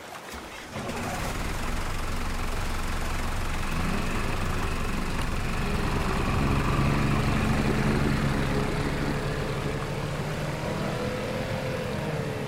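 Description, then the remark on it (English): A dive boat's motor starts up after a brief pause and runs steadily at a loud, constant drone, with a low rumble and faint tonal whine throughout, as the boat is driven out with divers aboard putting on scuba gear. “You all can put on your scuba gear while I drive the boat.”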